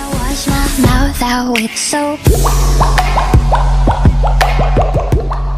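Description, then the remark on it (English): Rhythmic bubble-like pops with quick pitch bends bounce through a pop track, at first over sparse tones, then layered over a heavy, sustained bass beat. The pops stay prominent throughout. “like she takes these non-traditional music sounds like bubbles popping and makes them a pop chorus.”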